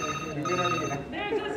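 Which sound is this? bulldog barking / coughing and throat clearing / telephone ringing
telephone ringing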